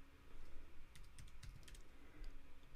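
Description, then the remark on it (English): Soft, quick clicks of typing a postal code on a computer keyboard, a cluster of keystrokes in the middle followed by a few more taps, over a low steady background hum with no talking. “Just put in the zipper postal code.”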